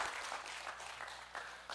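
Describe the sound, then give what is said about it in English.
A church audience applauds steadily after a sermon, many hands clapping in a dense, continuous patter with a few louder bursts standing out, and no voices on top. “If you didn't, don't clap.”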